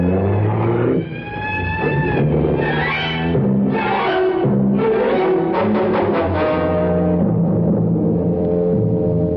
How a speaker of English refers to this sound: He's burning rubber to get away fast.